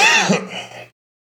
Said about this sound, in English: got this cough and it's annoying as fuck.